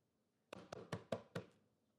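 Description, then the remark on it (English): Five firm knocks on a front door at midnight in a quick, steady rhythm, with silence before and after and no voices. “So you come knocking on my door at midnight.”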